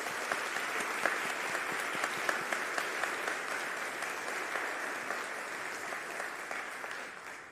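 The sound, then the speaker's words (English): A church audience claps steadily for several seconds to thank mentors and congratulate confirmands, a dense, even patter of many hands holding constant and then easing off slightly at the end. “And so I just want to thank everybody with an applause, to thank those who worked so hard and to congratulate our confirmands.”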